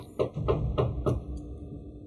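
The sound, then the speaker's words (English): Four firm knocks on a door in a quick, steady rhythm, fairly loud, followed by a brief hollow ring-out over a low background hum. “And then you hear a knock on the door.”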